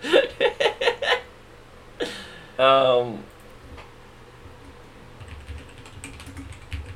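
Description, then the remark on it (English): A quick burst of crisp keystrokes on a computer keyboard, about six rapid taps, followed by a short laugh-like vocal sound and a few faint, softer taps toward the end. “So you can hear me typing in our computer.”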